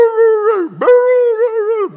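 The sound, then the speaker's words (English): A human voice imitates a greyhound standing in the middle of a racetrack barking incessantly at the stand, with drawn-out, howl-like yowls sliding down in pitch twice before rising again, loud with no other talk. “Another one stood in the middle of the track looking at the stand and just barked incessantly.”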